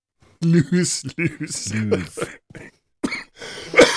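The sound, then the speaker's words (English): A person coughs and clears their throat in a run of raspy, uneven bursts, some voiced and gravelly, ending with a couple of sharp, harsher coughs. “Cough it up. Furball.”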